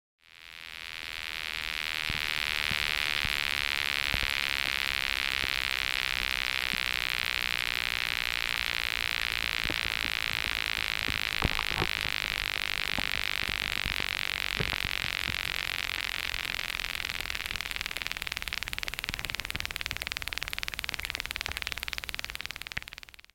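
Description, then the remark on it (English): Underwater plants give off a continuous high-pitched whine while photosynthesizing, produced by small trails of oxygen bubbles streaming out underwater: a steady buzzing drone that fades in and holds for the whole stretch, with faint scattered clicks and pops underneath. “plants produce sound, and they make these really weird whining sounds as they're photosynthesizing.”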